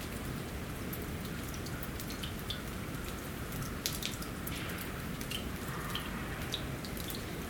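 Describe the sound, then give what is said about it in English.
Steady patter of water dripping from melting ice, many small drops falling in a dense, irregular rhythm, with a constant wet hiss underneath and no voices. “All the ice is dripping now.”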